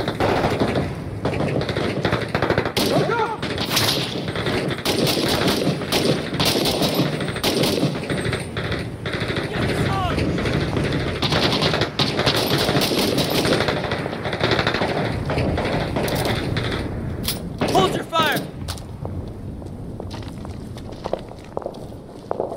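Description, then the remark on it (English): Suppressive gunfire used to pin enemies in place while a team flanks: sustained bursts of automatic gunfire rattle almost nonstop for over twenty seconds, loud and dense, with sharp cracks layered over a constant rumble and the scuffle of footsteps beneath. “Pin enemies in place with suppressive fire while you flank.”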